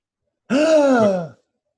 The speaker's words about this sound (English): Can I gasp? Yes, please.